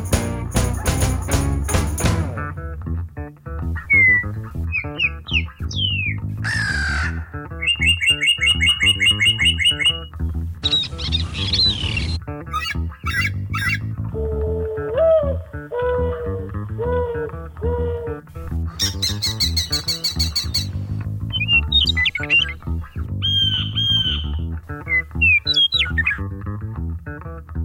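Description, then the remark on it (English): A dense, overlapping medley of assorted bird calls: whistles, chirps and trills, punctuated by harsh crow caws, loud and busy throughout with no talking. “All right, so I can't name all of those bird calls, but serious birders, I'm sure could.”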